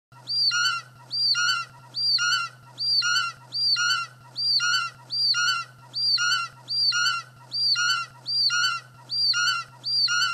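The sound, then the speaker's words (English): A bird call repeats about a dozen times at a steady, even pace, each note identical, rising and falling, loud, with a constant low hum underneath and no talking. “The first hour is just going to be that bird song.”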